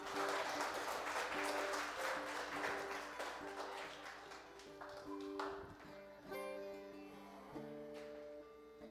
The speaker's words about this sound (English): Thank you. Good job. Clap for our friends.